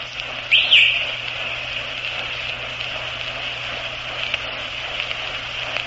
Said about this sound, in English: That shrill whistle you hear is … coaching down there.